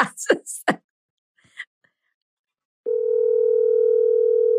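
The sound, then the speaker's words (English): Brief muffled vocal sounds and a few faint clicks, then a loud, steady electronic phone ringing tone of an outgoing call starts and holds unbroken until the end, with no answer. “Get her on the phone.”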